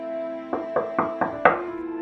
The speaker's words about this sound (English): And I get up to the door and seem a little trepidatious. I pause as I reach for the handle, and instead I knock. instead of just going in.